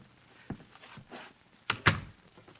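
A door is pushed shut with a couple of soft bumps, then two sharper thuds close together as it latches.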